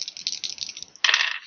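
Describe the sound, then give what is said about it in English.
Dice rattle and clatter across a table in a quick string of light clicks, then a louder burst of tumbling clacks near the end, with no one speaking. “No, I'm burning these dice.”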